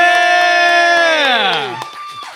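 A loud, sustained cheering shout holds one pitch, then slides downward before cutting off, with steady clapping tapping underneath.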